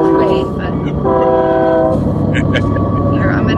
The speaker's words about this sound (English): And we got a train coming. Sorry.